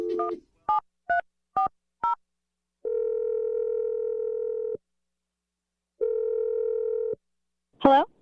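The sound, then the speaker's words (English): Five quick touch-tone keypad beeps dial a number, followed by two long, steady ringing tones separated by a pause, then a brief burst of sound as the line picks up. “I'm going to dial Tiffany's number and let you make your awkward Tuesday phone call.”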